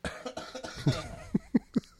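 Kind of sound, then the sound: human body sound, cough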